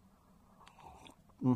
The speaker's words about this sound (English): Sorry, just had to have a slurp of my coffee this morning before I have another mouthful of my water.